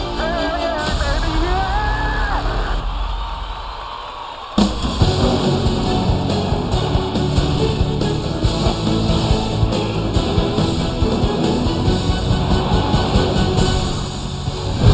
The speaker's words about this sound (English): Pressure is building in Watkins Glen. Truex is out of fuel. Truex is out. The crowd roars. They're going to see for the first time Chase Elliott win the Funster Energy Cup Series.